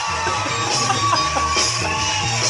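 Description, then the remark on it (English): A girl lets out a loud, sustained scream over a dense, noisy backdrop of crowd-like yelling and whooping, all at a steady high volume. “The best is the real loud girl scream right here.”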